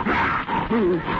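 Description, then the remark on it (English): A man's voice growls out a gruff, rasping, loud imitation of the MGM lion's roar in two rough bursts with a brief catch between them. “that's the MGM lion.”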